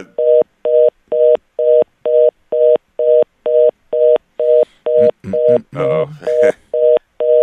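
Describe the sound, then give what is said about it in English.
A steady telephone line tone pulses in even on-off beeps, about two per second, loud and close, while a voice briefly talks over it near the end. “We're going to try to we're getting a dial tone.”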